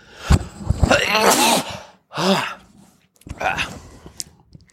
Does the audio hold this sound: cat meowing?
no